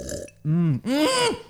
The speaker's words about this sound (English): There have been people going around the neighbourhood... inexcusably burping all over other people's gnomes.